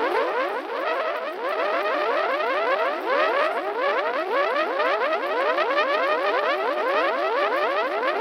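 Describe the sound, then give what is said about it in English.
Burning drips of melted plastic bag falling from a stick hung up high, a homemade effect called upside-down fireworks, making a rapid, continuous stream of overlapping whistling zips that sweep in pitch, steady and fairly loud throughout, with no voices. “You create this by burning a plastic bag on a stick hanging up high, and as it melts, it makes these sounds as the pieces fall.”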